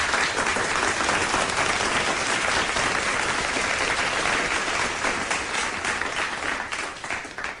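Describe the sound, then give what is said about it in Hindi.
Sustained applause from an audience, a dense, steady wash of many hands clapping at a fairly loud level that tapers slightly toward the end, with no voices standing out. “खुशामदीद खुशामदीद, welcome welcome welcome welcome, और आप कामयाब हो गए, इसके लिए तो तालियां लाजमी है।”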